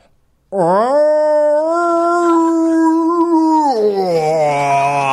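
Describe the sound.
A voice imitates the noise a distressed cat made on an airborne plane, with one long, loud, strained yowl that rises, holds steady for a few seconds, then drops lower and wavers toward the end.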